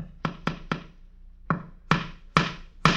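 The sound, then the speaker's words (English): Sharp hammer blows drive a nail into a wall as a man hangs a horse picture from an Isaac's Livery calendar, on a hot April day in St. Joseph, Missouri: three quick strikes, a short pause, then four more in a steady rhythm, each a loud percussive knock with a brief ringing tail. “The man is nailing a horse's picture to the wall.”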